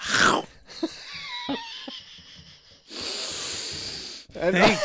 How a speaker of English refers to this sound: Oh, no. He's sniffing those peppers. Oh, think of it. Here it comes. Pepper sniffing havens over here.